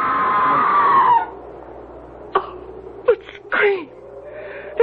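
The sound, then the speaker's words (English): A human scream at Bodmoor Manor rises into a long, wavering wail and trails off after about a second, followed by a few short, sharp cries and knocks against a quiet, hollow background. “It was a scream, wasn't it?”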